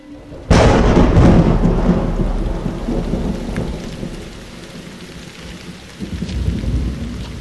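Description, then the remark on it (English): A sudden, loud crack of thunder from a powerful storm under a nearly black afternoon sky rolls into a long, fading rumble over the steady hiss of heavy rain, with another deep rumble building near the end. No voices. “The Hope's landing has been complicated by powerful storms over the region.”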